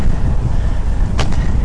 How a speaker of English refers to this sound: God, it's windy.